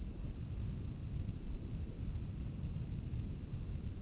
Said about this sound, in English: And I will just add, it's now thundering here.